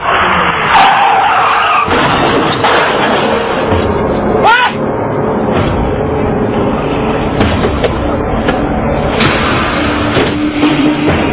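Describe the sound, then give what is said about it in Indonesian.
Car tires skid loudly and harshly, a rough grinding screech that runs on for several seconds, with a brief sharper squeal partway through, with no voices. “Untung mobil saya gak lecet. Makanya kalau jalan pakai mata.”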